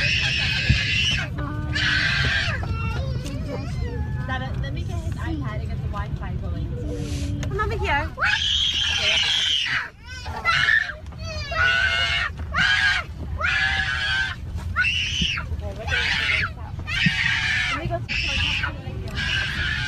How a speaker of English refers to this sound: So keep in mind, that was an eight-hour flight. That's before the flight even took off. I would tell you, as a father of five, if I heard a kid going crazy like that on the plane, I think I might scream out loud